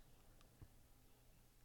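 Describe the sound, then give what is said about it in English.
A single sharp, loud cough bursts out after nearly two seconds of quiet, cut short right at the end. “Oh, I'm talking about coughing.”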